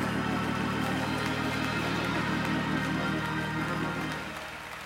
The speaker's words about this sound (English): Clap those hands and give God your best praise.